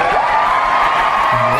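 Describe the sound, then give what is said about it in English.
Loud, steady applause and cheering from a crowd fill the whole moment, with a rising whoop near the start and a short shouted voice just before it ends, opening AfterBuzz TV's Real Housewives of Atlanta After Show. “Yes, applause.”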